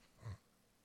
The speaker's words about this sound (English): And the dogs are upset,